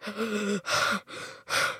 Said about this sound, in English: If you're breathing like that, you need to work on your breathing.